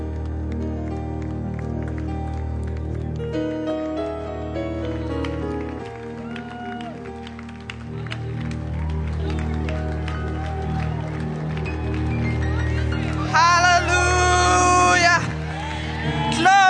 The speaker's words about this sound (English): Let's put our hands together. Let's keep clapping.